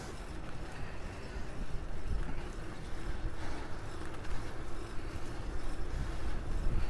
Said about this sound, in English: Ooh, getting a little windy now. There's some clouds coming up.